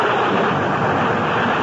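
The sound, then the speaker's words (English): A steady, unbroken roar of storm wind outside, broad and rushing, holding an even loudness throughout the short stretch with no voices or other sounds over it. “I don't want you to go back in the storm like this.”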